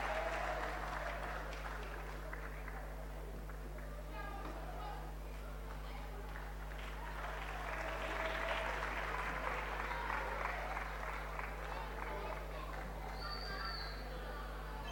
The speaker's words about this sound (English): Amen. Let us give a hand clap unto them all. Give it up unto them.